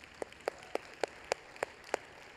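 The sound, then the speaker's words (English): Clapping from a church audience in a steady, even rhythm: seven sharp claps at a moderate pace over a faint background hiss, with no voices. “And I have to ask ourselves, yeah, you guys can clap for that.”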